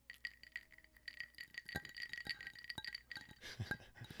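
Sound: ice cubes clinking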